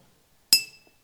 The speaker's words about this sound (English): And I'm going to kick it off by, well, like I said, I haven't got anything to make a noise with. I've got a pen here and an empty bottle, so I'll just hit that to start with, I guess.